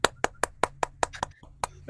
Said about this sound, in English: I was clapping. Ain't nobody else clapping, so.